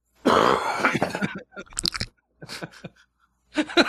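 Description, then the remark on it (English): A man coughs hard into a rag: one long, rough hacking burst followed by several shorter, sputtering coughs in quick succession, fairly loud, with no talking. “He coughs hard in this rag and then wipes his forehead with the rag.”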